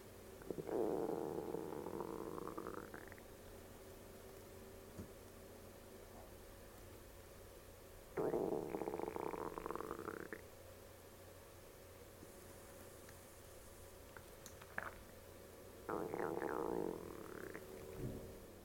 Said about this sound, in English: That's the sound of my stomach talking at 11:35. I drank my coffee-est Soylent at about 8:30. And as you know, I fast once a week and my stomach never talks like this.